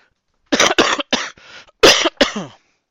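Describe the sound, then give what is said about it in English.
A loud fit of wet, phlegmy coughing from a person whose Dr Pepper went down the wrong pipe: several harsh bursts in quick succession, a short raspy gap, then two more rough coughs, with no talking. “That was me coughing because I drank some Dr. Pepper down the wrong pipe.”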